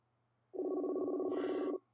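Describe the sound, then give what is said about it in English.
One ringback tone from a phone call waiting to be answered: a steady, buzzy, mid-pitched tone lasting just over a second, starting and stopping abruptly, with no talking. “You hear the ringing.”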